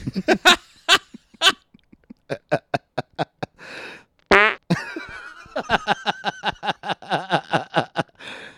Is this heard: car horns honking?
no